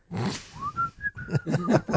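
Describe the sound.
A short whistled melody: a rising glide into a string of clear pitched notes, fairly loud, with breathy, rumbling sounds underneath.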